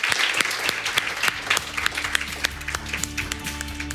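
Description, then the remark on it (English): An audience applauds steadily to thank an evening's panel, many hands clapping in a dense, crackling wash that holds fairly loud and even for the whole stretch, with no voices standing out. “Please join me in thanking our amazing panel for tonight.”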